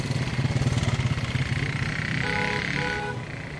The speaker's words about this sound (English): Unlike Lagos, Calabar felt safe enough to use the Okada, the motorbike taxis that everyone gets around on.